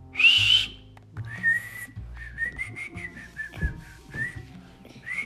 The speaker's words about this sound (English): But I'm not very good at it. I think I qualify as being able to whistle, but I would rank at the bottom of the field.